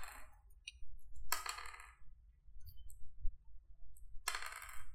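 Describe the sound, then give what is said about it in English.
Dice clatter across a hard table in three separate rolls for a second casting of a spell, each a quick burst of rattling clicks, fairly loud with quiet gaps between them and no talking. “Okay, so then you have to roll the dice again because it's a separate casting of the spell.”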